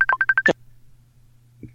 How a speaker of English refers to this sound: I hear a ringing sound. Do you too?